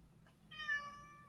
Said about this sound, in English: Someone's got a hungry cat in the background. Feed that cat. Yes, I do. Sorry. A hungry cat. he just wants to go outside and it's dark and he's not going.